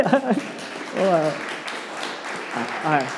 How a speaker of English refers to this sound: And he goes, "We should clap for them." So I won't call you up, but...